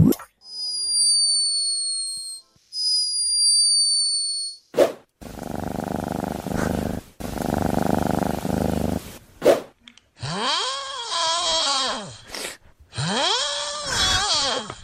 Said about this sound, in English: Can you match the snores today? Do we give them to him one more time? Do you want, yeah, one more time. Listen. Well, have another listen.